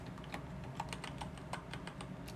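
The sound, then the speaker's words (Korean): Rapid typing on a computer keyboard, a steady stream of crisp key clicks at an uneven rhythm, fairly clear over a low background hum, with no voices. “네가 준 키보드 정말 잘 쓰고 있어.”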